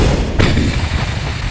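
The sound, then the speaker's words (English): A fireball spell explodes in a single sudden burst, a sharp blast that swells into a heavy, low rumbling roar that keeps churning to the end, with no voices. “Fireball?”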